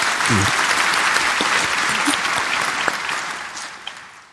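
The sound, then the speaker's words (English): An audience applauds steadily, dense clapping forming a bright, continuous wash of sound that holds fairly level for a few seconds, with a brief low vocal whoop near the start. The round of applause is for Melissa, who could not attend that evening. “Let's have a round of applause for Melissa.”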